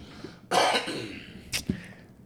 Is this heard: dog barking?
no